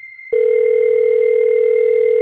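A phone line tone sounds on a call: a loud, steady electronic hum that starts abruptly after a brief moment and holds unbroken, with a faint high whine running throughout.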